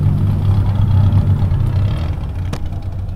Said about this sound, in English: A little before nightfall, I drove to the outskirts of San Juan, to a big grassy lot where hundreds of people were showing up in cars with souped-up engines.